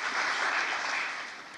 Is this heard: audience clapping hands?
yes